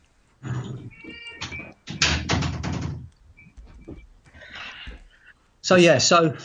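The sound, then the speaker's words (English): A cat meows loudly, with a door thudding shut and some shuffling movement, a few short bursts of sound separated by quieter pauses. “Can you hear my cat in the background? I'm just going to shut that door 2 seconds.”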